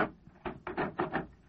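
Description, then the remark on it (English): A door being opened: a quick run of rattling, wooden clunks as the latch and frame shift, five or six bumps in about a second, with no voices. “Open the door.”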